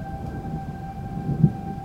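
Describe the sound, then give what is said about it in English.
Steady, sustained civil defense tornado warning sirens in Jackson County hold level throughout, wailing over a low rumbling background with no talk. “Those are the sirens.”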